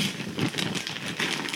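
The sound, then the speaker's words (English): Blue gift wrapping paper being torn off a poorly wrapped box, a steady burst of crinkling and tearing with sharp crackles and rustles that carries on without a break for under two seconds. “is opening a blue box. Yeah. The wrapping paper is blue.”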